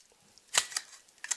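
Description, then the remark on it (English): Sharp, bright smacks against the side of a vacuum-sealed cocktail shaker as it is knocked open: one loud crack, a lighter hit after it, then two quick snaps at the end, with no talking. “You might need to give it a smack to open it up. Because again, there's. Where do I smack it? So. Because it's vacuum sealed shut.”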